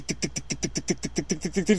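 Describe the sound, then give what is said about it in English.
A loud, rough minivan exhaust revving as a woman drives it, at a steady, rapid pulse, about six beats per second, with a harsh rasping drone and a rise in intensity near the end, without talking. “Because did you hear the fucking exhaust on the one she was driving? It was horrible.”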